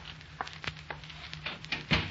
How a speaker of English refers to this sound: Maybe you'd better close that door.